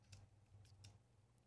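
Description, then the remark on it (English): A few soft, sparse clicks of keyboard keys being pressed, irregularly spaced over a low steady hum, with no voices. “No, I like hearing the keys.”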